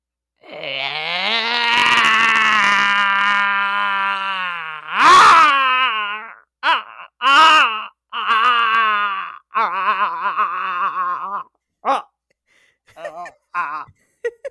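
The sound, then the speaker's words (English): A person imitates a tortoise sounding like a raptor, as in Jurassic Park: a long, wavering, high-pitched screech that peaks in a harsh burst, then breaks into a series of short, choppy shrieks and chirps. “But my tortoise sounding like a raptor would be like this.”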